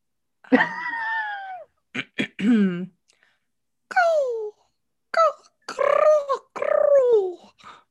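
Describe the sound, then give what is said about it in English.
A person imitates the cooing of mating pigeons with about six throaty, gurgling vocal bursts. Each slides downward in pitch, with short pauses between them. “The sound of pigeons making love is very specific. I need you to give me your impression.”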